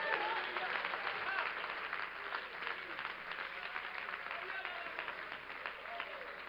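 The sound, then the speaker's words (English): In a church, a crowd claps steadily for several seconds, a dense wash of many hands applauding together at a fairly even level, with faint voices mixed in beneath. “Oh, somebody that's excited, will you clap your hands for a moment?”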